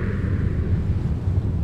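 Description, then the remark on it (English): A deep, engine-like growl rumbles steadily and loudly for under two seconds, thick with low-end texture and no clear rise in pitch. No voices are heard. “It starts as a low rumble, then a growl, and then it pitches up to almost a roar. Not an animal roar. Like an engine.”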